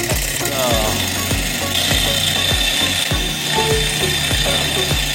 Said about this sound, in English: It is a phone charger that's supposed to charge my phone. That is a Stirling engine.